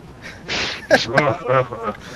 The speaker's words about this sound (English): That was high pitched. Yeah, it was. I just breathed in and it made that sound.